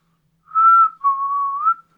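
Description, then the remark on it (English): A person whistles two clear, sustained notes while walking around, the second longer with a slight upward bend at the end, fairly loud against silence, with no talking. “I'm just going to walk, and I'm just going to, as I walk, I'm going to say, I'm just going to start whistling.”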